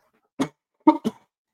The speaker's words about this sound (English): Excuse me. I should have just – maybe I'll just mute myself next time I have to cough.